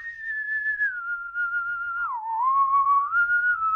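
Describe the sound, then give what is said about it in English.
A person whistles a steady tune alone late at night, one clear continuous note that glides down and back up, fairly loud, with no talking. “…, I shout, stop whistling and go to sleep, it's late.”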